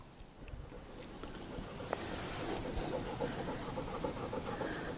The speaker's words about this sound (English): that isn't a train going through, that's Rain, who's panting